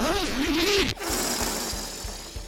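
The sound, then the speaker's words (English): A zipper on a large helium parade balloon, fitted for easy deflation, is pulled in one long, steady rasp with faint regular ticks, lasting about a second and a half, after a brief wavering tone at the start. “Oh, and in case you wondered, instead of the air hole on a normal balloon, these balloons have zippers attached for easy deflation.”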